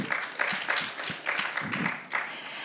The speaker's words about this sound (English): That gets a clap.